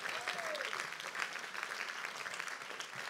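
A crowd applauds in praise of the Lord with dense, steady hand clapping that fills the whole stretch at an even loudness, with a brief faint whistle-like tone near the start.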